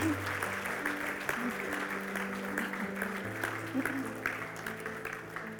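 A crowd applauds steadily, dense overlapping claps filling the whole clip at an even level, with a low sustained hum or music tone underneath.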